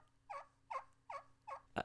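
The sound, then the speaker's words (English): Four evenly spaced, raspy turkey hen yelps played on a game call, clear, followed by a sharp, bright squeak at the end. No one speaks. “that's a turkey currently on the show with us”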